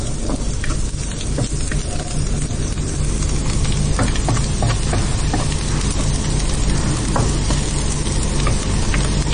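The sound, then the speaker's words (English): Steady sizzling of onions frying brown in a pan, with scattered clicks and scrapes as they're stirred, a dense crackling hiss throughout the whole stretch and no voices. “Okay, so now the onions have gone nice and brown, and you're just adding the tomato puree to that?”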